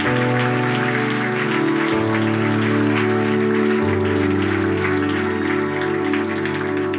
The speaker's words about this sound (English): And so I just want to say thank you to our team, everybody who serves on full-time staff, part-time staff, and volunteer team. Can we just give them a big round of applause and say thank you for making Legacy Weekend 2020 a success?